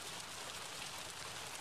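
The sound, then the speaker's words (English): Steady, dense rain during a storm, hissing and pattering without a break, a broad wash of noise that holds the same level throughout with no voices. “We were using it for the picnic before this freaky storm started.”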